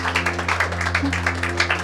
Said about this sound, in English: Come on, give the Lord a hand clap as they come. Hadi alkışlayalım mı Rabbi bu kardeşler için?